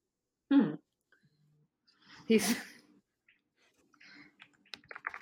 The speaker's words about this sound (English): Sorry, I just thought of an idea. I'm writing that down. I just hear you typing, and I'm like, what is she doing? Because, like, I get worried when you start typing up shit.